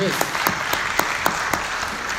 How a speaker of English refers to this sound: All right. Sure, let's give him a round of applause.